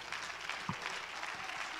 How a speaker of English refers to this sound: Why don't you give the Lord a hand clap of praise?